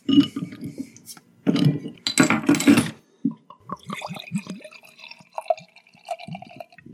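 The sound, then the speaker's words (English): Beer brewed in 2021, over 14% alcohol, glugs out of a bottle into a glass, with a short burst of hissing splashes followed by a run of gurgling, rising bubbly tones, fairly quiet. No one speaks. “Not much of a bottle pop there. Seems fairly still, although now that you've poured it, it's a bit darker in color maybe.”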